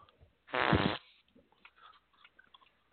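A loud, sputtering fart lasting about half a second, prominent, followed by faint scattered sounds and quiet background.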